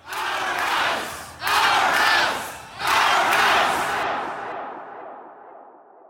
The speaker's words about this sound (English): protesters, hundreds of them, shamed MPPs, were thrown out of Queen's Park, demanded to be let back in. MPPs could hear the shouting and banging inside the legislature chamber.